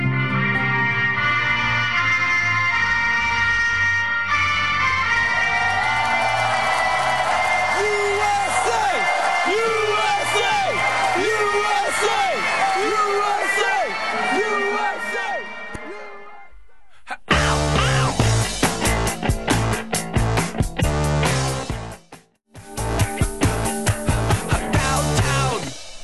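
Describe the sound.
A loud dance-punk pop song plays, opening with sustained layered tones and a wailing voice, then breaking into a driving, pounding beat after a brief pause, with another short dropout near the end.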